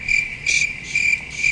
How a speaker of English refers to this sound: Yeah. Per usual. Yeah, as usual. I heard one extra cricket.